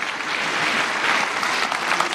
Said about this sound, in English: Can you give the Lord a good hand clap, everybody? Thank you for your time.